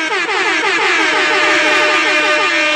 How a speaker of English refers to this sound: So let's give him an air horn.